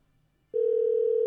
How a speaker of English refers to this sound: Wait, her phone doesn't work right when you call her. It's awful loud. Yeah, I'll turn it down.